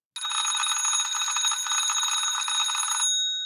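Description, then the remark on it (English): A mechanical doorbell from the early 1900s rings continuously for about three seconds, a loud, rapid metallic trill from a striker hammering a bell, then stops abruptly with a brief ringing decay. No voices. “This particular bell that I'm going to ring is from the early 1900s.”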